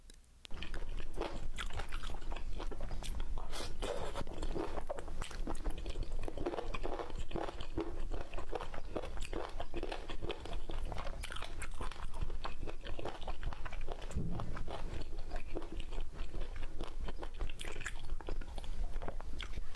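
Loud, crisp crunching as crunchy food is bitten and chewed, with dense irregular bursts of crackle repeating steadily throughout, no voices over it.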